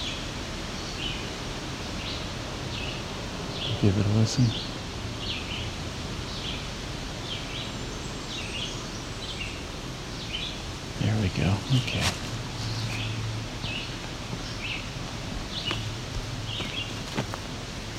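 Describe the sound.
Repeated high-pitched bird song phrases ring out throughout, each ending in a thin, very high whine, over steady wind noise with a man briefly speaking twice.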